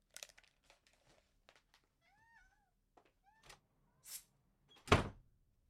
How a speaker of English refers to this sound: And my cat's meowing, so I've got to let the cat out of the room.